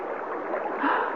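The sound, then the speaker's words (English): Steady rushing, churning water, a dense continuous wash that swells slightly louder near the end, as a crater fills with water and turns into a shallow lake. No voices. “That crater directly below us. It's filling with water.”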